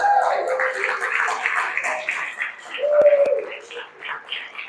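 A crowd breaks into a round of applause mixed with cheering and shouting voices, steady and fairly loud for a few seconds, with a couple of sharp claps standing out midway.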